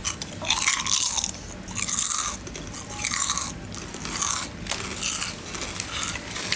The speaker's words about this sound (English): Let's see who can get the best crunch. Okay. Oh, that was like textbook crunch.